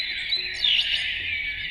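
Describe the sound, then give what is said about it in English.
Recorded birdsong plays from a small motion-activated sound box in a Dubai hotel room, a dense, continuous wash of high chirps and tweets, steady and moderately loud throughout the brief moment, with no voices. “This is a recorded collection of birds contained in a small motion-activated box that you can use to bring some sound into your apartment.”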